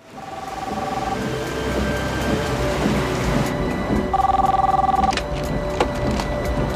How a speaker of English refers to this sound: She drives up to the coast and receives a call on the car phone.